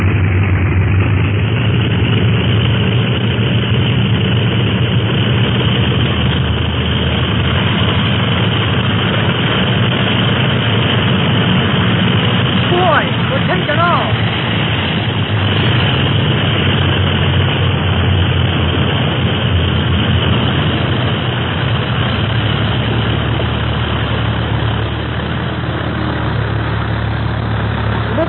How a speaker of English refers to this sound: Clint made a good takeoff. And just in time. Another minute and Clint would have turned that sampan into a junk.